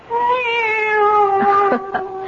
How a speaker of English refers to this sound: It's the cat. She's back.